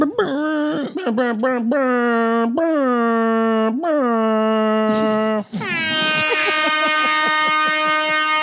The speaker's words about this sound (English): Is that an air raid siren? Is that what that is? Sounds like it to me.